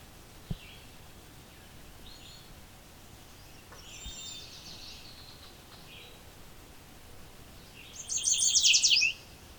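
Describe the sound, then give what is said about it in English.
A yellow warbler, gleaning bugs from leaves among tall shrubs about 20 feet high beside a pond in a swamp near a road, sings a quick, bright phrase of high sweet notes near the end, after a few faint chirps over a soft outdoor hiss. “Open enough for a yellow warbler.”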